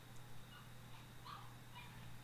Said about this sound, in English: Oh, I hear my dog out there. She's being sad. Oh, sad puppy.